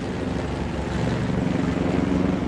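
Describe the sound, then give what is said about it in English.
A helicopter drones steadily overhead at the Circuit of the Americas during an F1 Academy event, its engine and rotor noise a loud, continuous roar that holds throughout without pause. “There's a helicopter.”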